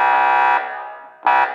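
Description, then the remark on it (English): Two loud, brassy air horn blasts, a long one and then a short one, each harsh and buzzing with rich overtones, with a fading ring between them and no talking. “Air horn. I got an air horn.”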